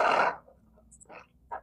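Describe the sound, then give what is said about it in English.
A loud, rushing burst of air from an air conditioner buffets a phone's microphone held in front of it for a fraction of a second, then fades into faint, scattered hissy fragments. “it in front of my AC.”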